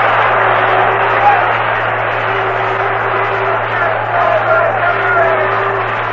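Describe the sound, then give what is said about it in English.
A large baseball stadium crowd in Cincinnati roars steadily for several seconds during a fourth-inning pitch, a dense, continuous wash of cheering and voices with no pauses and no single voice standing out. “And the Cincinnati crowd is roaring.”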